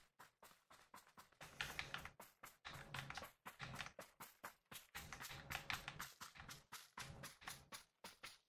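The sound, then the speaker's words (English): Rapid clacking of keys on a modified computer keyboard while playing a game, in dense bursts, a steady patter of taps that speeds and pauses repeatedly, with no voices. “Feels good to play on a keyboard.”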